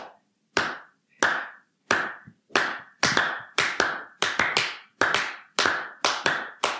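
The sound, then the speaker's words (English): Sharp, crisp handclaps keep a steady pulse, soon joined by extra claps falling between the beats so two interlocking rhythms overlap as a polyrhythm. Fairly loud, with no talking. “So I want you to clap the pulse.”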